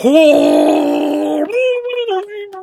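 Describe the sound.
A voice imitates someone screaming underwater: a loud, sustained, warbling cry for about a second and a half, then a lower, wobbly, bubbling moan that trails off.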